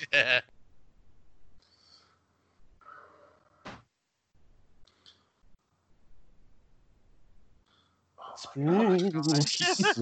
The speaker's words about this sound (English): The spooky sheep.